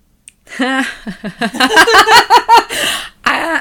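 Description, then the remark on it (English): Laughter in a rhythmic series of voiced bursts, breaking into a couple of harsh, breathy coughs at the end. No words are spoken. “Every time I laugh, I start coughing.”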